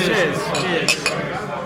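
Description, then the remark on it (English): Busy ambience in the White Hart pub in Southwark, with a steady murmur of indistinct voices, broken by two bright glass clinks in quick succession near the middle. “So yes, we're sitting here in the White Hart Southwark International Mode, sitting down there.”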